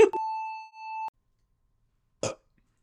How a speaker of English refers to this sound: I mean, it was just a very crisp burp. So that brings it up. Yeah. Crisp burp, brother to crisp rat.